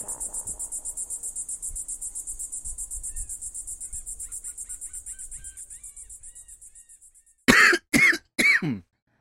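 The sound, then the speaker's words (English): A person chokes on their own saliva and coughs three times in quick, loud bursts, right after a steady pulsing insect chirp fades out. “Choked on my spit.”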